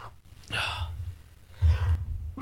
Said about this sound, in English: Your sneeze is scary. Oh my god. Jesus. Are you okay? Oh man. Where'd that come from?